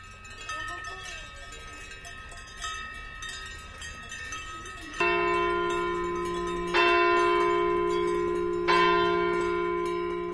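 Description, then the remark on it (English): In a Swiss alpine village, Angelus church bells from a nearby church ring out in slow, resonant strikes, each swelling and decaying. Beneath them is a steady jangle of cowbells on a herd of cows heading back to the barn, with faint bleating in the background. “In a Swiss alpine village, Stephen Feld recorded a herd of belled cows heading back to the barn as the Angelus chimes from a nearby church.”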